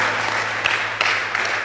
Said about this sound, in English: I thought you'd be clapping by now.